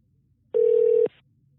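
A single steady electronic ringback tone on an unanswered outgoing phone call sounds clearly for about half a second and then cuts off, with quiet line hiss around it.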